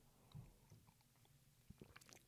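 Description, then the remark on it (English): A quiet sip of tea: a soft slurp followed by faint swallowing and small wet mouth clicks, with no one speaking. “Had to take another sip of tea.”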